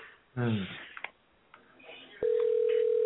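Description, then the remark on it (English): A phone call's ringing tone sounds, steady and loud, filling the last second after a brief voice fragment and a few faint clicks, with no one picking up. “So now he's not answering his phone.”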